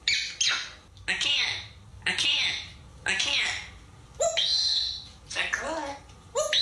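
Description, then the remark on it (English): A parrot squawks out a string of short, speech-like phrases in a shrill, raspy voice with a southern accent, saying "I'm going to get you" and imitating human talk in clipped bursts with brief pauses between them, fairly loud. “It's a parrot that says, I'm going to get you, but he does it in a southern accent.”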